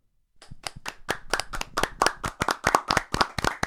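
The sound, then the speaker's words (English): Brisk, steady applause of sharp, evenly spaced hand claps, about four or five a second, growing slightly louder and continuing with no voices over it. “Raucous applause.”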